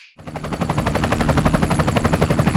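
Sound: helicopter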